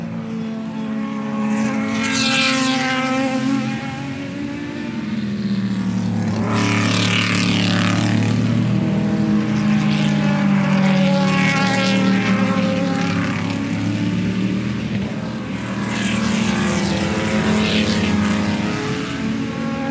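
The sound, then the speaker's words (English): Powerful Le Mans endurance race car engines roar continuously, with several cars sweeping past in waves of rising and falling pitch, loud, their whine layered over a steady droning background. “In fact, yesterday, Saturday evening, I ended the day with the sound of Le Mans cars in the background.”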